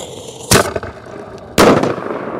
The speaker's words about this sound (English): With a perfect afternoon to put on our own fireworks display, we traveled from Truist Field across the border to Fort Mill, where Knight Stadium used to be.